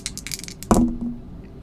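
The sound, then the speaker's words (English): Dice rattle briefly, as if shaken, then clatter onto a hard table with one sharp knock and a short ringing tail, rolled for a spot hidden roll in a tabletop game. Fairly loud, with no voices. “Excuse me, I'm sorry, I gotta break out the dice.”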